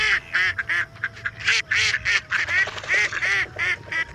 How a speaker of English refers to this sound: Look at the mallards here. The drake is doing a courtship dance for the female in the water. He's bobbing his head up and down like a funky chicken.